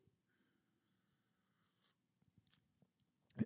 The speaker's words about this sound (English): Take a sip of coffee.